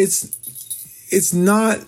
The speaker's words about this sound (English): If you're hearing a jingle, it's my dog. He's trying to get my attention, but he doesn't understand.